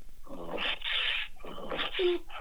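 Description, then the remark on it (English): A person imitates a dog barking with a rapid series of rough, breathy vocal barks, about four bursts in quick succession, fairly loud. “Can you bark for me, Daddy?”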